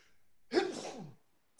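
A single loud sneeze bursts out sharply and trails off over about half a second, with no talking around it.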